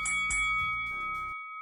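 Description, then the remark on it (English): A bright bell rings, struck twice in quick succession, its clear high ringing tones sustaining and slowly fading over about a second and a half with no voices. “Ring the bell.”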